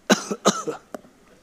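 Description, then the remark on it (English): A man coughs two or three times in quick succession, harsh, with the last cough softer, followed by a faint click and quiet. “And in the background, you can kind of hear a guy cough.”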